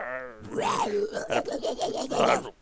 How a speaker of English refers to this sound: As I say at the end of every episode of Paleo Bites, just the Carnotaurus roar from Dinosaur.